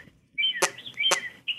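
Birds chirping: high, thin whistled calls that rise and slide, broken by two sharp bursts, at a moderate level with no voices present.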